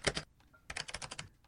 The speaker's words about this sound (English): What are you typing? I accidentally did a capital H. I did a smiley face.